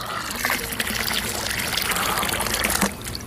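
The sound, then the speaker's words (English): Water pours and splashes steadily for a few seconds, a continuous sloshing gush with scattered bright spatters, as a whole bucket of water is dumped into an empty, dry pond. “And so Glory and Liv watched as all the animals ran over to this empty, dry pond and watched Wally dump a whole bucket of water into the pond.”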